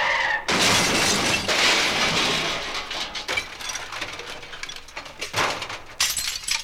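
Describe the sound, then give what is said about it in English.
A car crash: a loud crash of breaking glass bursts out, then shards keep tinkling and scattering for several seconds, with a few sharper cracks near the end. No voices. “I kind of liked it because you could hear each piece of glass break.”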